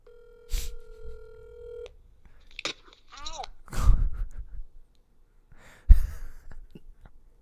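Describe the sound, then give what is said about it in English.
A telephone call to the speaker's mother connects with a steady electronic tone lasting over a second, followed by rustling, clattering handling noises and a few sharp knocks as she drops the phone handset, with soft breathy sounds. “So let's call Mom and see what happens.”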